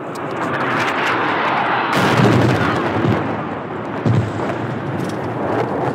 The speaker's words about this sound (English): I witnessed the destruction on my last reporting trip into Syria in 2016. We were driving around in a town called Ariha when we heard the planes. And then we watched as a bomb dropped on the town below us.